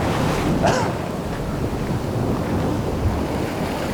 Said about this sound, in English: Well, that was a surprise. There's a channel nearby and the water is shooting up through the channel. I didn't think that was going to happen. Just got me wet.